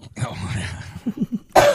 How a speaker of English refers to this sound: You need to warn me before you cough. Oh, do I?